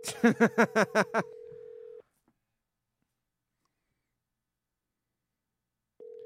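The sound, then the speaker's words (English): A quick run of six electronic dialing beeps from an outgoing phone call to two men, followed by a flat steady line tone that cuts off, then returns after a long silence, like a busy signal. “We're calling two dudes that are probably both always in they're the studio.”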